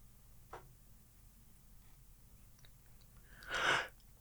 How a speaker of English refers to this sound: These yawns are contagious, dude.